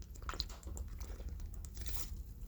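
A quiet drag on a cigarette with faint crackling, followed by a soft sip of sweet tea, with scattered small mouth and handling noises and no talking.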